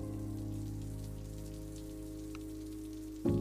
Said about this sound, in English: It is raining outside, but we can step inside the cafe where there's no rain